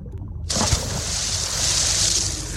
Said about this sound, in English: Pretty peaceful underwater, huh?